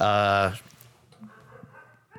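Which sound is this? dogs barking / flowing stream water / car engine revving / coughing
dogs barking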